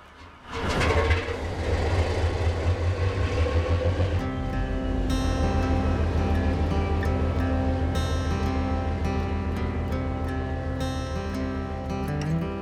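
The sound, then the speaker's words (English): The engine of the boat Second Wind roars up after a second as its captain steers it from the dock out to sea toward Oak Island, then settles into a loud, steady droning rumble with a humming tonal whine layered on top. No one speaks. “With a skillful hand, the captain steers the Second Wind out to sea as the view of the dock slips away behind them.”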